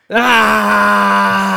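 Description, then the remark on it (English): A single loud, drawn-out scream, muffled by walls, that holds one steady pitch for over a second, more a sustained wail than a shriek, with no talking around it. “And he's screaming.”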